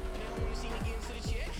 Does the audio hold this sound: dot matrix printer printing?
no